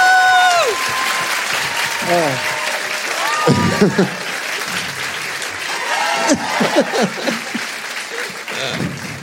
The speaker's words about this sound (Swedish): Vi gör det med en jublande rungande applåd och jubel